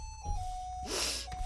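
An alarm sounds as a steady, mid-pitched electronic tone, briefly drowned out by a breathy burst of noise before the tone carries on.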